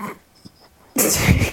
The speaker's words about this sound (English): Oh, my dog's growling at that comment. But please don't start growling. It's because you slagged his Twitter off.